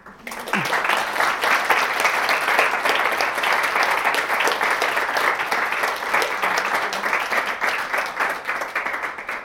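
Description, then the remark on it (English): An audience claps steadily for about nine seconds, a dense, even wash of many hands that starts abruptly and holds at a constant loudness with no one speaking. “You probably don't get your photo taken if you don't clap.”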